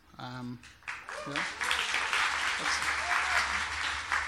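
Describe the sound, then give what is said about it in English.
A brief voice opens, then an audience bursts into sustained, dense applause for a shepherd speaker as he arrives, many hands clapping steadily and loudly until the end. “I'm a little alarmed that you get a round of applause just for coming.”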